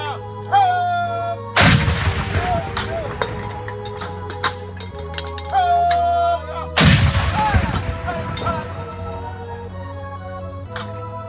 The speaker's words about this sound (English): As the Masons filed around the casket with their evergreen branches, two cannons fired in the background, giving a final salute.